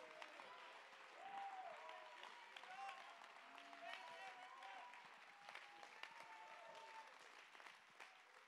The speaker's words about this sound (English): Clap your hands and give God the praise.